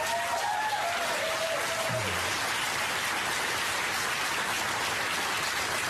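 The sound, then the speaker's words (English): An audience claps steadily for about six seconds in response to a call for Americans to take in Afghan refugees. The clapping is a dense, even wash of many hands with no talking over it. “And I'm sure everyone who just clapped is thinking the same thing.”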